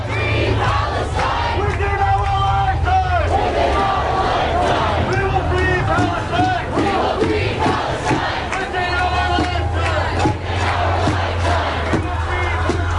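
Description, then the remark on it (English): Thousands of protesters gathered outside the Israeli consulate on 42nd Street and 2nd Avenue in New York chant loudly in unison against Israeli policies, voices rising and falling in rhythmic shouted phrases over a steady low rumble, with overlapping calls and cheers throughout. “listening to speeches, and chanting against Israeli policies”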